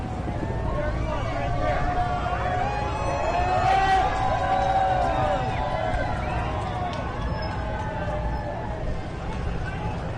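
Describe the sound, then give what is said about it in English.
A crowd outside cheering for Donald Trump as he arrives with his motorcade, a dense wash of overlapping shouts and raised voices that holds steady and loud for about ten seconds, with a brief swell of yelling midway. “So we got some people outside cheering for Trump.”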